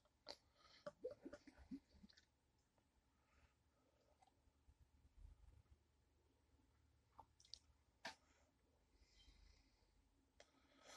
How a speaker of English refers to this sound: We're gonna definitely pour this up and see what's going on.